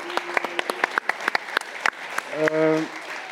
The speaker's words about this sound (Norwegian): Det mener jeg av hele mitt hjerte. Bare applaus på damerne.